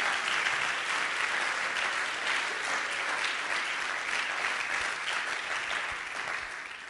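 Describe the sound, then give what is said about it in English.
A church audience claps steadily to the Lord throughout, a dense, loud wash of many hands applauding at once with no break, tapering only slightly near the end. “Could we clap our hands to the Lord for that miracle?”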